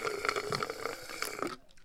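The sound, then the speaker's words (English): A drawn-out, wet slurp of someone sipping a drink, with a squeaky, gurgling tone lasting about a second and a half before it cuts off to near silence. “Hold on, let me take a sip of my drink now.”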